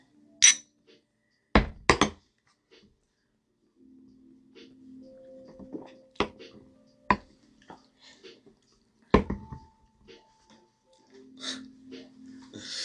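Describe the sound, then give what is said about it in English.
Small shot glasses clink together sharply a couple of times in a toast, followed by scattered knocks of glass being set down on a hard surface, with faint breathing and rustling in between. “You gonna take this shot? Sure. Cheers, boys. Cheers.”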